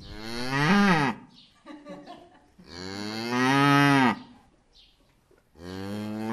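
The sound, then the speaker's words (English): A cow moos loudly, three long, drawn-out lowing calls separated by brief pauses with faint barn shuffling in between, the last call cut off at the end. “So a lot of times when we're in the barn, we'll get a big old lick from one of our cows.”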